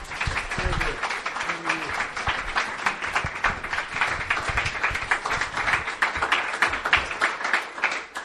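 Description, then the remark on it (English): Sustained audience applause at a comedy show as a comic finishes a set, a dense, steady patter of many hands clapping for the full eight seconds, with a few faint voices and cheers mixed in near the start. “Right, let the applause die down.”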